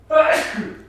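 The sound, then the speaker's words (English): A single loud sneeze, a voiced intake rising into a sharp, breathy burst that fades quickly within about a second. “Bless you.”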